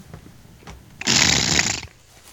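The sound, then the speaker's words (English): A loud, buzzy raspberry (a Bronx cheer) blown through the lips, one sustained sputtering burst of just under a second that rattles coarsely before cutting off, with quiet murmuring on either side. “Was that a Bronx cheer?”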